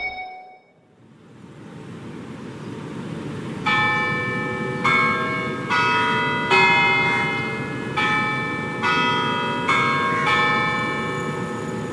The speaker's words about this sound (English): It's 10:30 a.m., and those are the chimes of the clock tower at Victoria Theatre and Concert Hall. The clock mechanism was installed in 1907, and it's checked for accuracy twice a week.